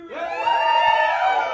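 A live audience cheers loudly, a burst of shouts and whoops rising quickly and holding steady for over a second.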